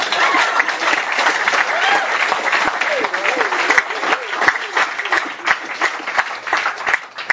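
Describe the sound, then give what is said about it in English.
A church audience breaks into sustained, dense applause after a prayer, many hands clapping together at a steady loud level for several seconds, with voices calling out and cheering faintly underneath. “Hey, if we're going to clap, let's clap.”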